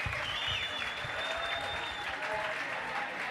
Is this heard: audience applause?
yes